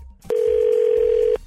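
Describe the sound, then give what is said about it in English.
A single steady, mid-pitched telephone ring tone of an outgoing call placed live on air by a 102.9 The Wolf radio show sounds for about a second, loud and unbroken, with faint low background noise around it and no talking. “We're calling Nathan to find out why he's not calling her back.”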